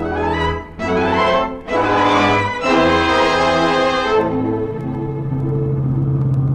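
A loud, steady engine rumble from a moving car, its tone shifting and briefly dipping a few times as if changing gears, then settling into a low drone.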